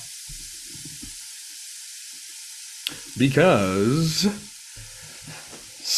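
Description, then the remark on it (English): Meat sizzles on a grill with a steady crackling hiss that runs throughout, while a voice briefly speaks in the background and a sustained vocal tone rises midway. “That was the Pigskin Pick'ems, which means we have to start the grill.”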